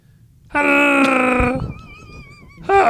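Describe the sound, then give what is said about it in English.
A voice imitates a Wookiee's growling roar: a loud, sustained, raspy vocal groan lasting about a second, followed by a quieter wavering whine and the start of another loud burst. “What sound does a Wookiee make?”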